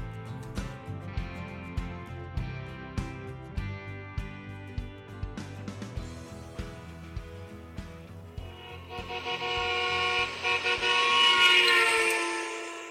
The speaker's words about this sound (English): You heard the car flying by you just then.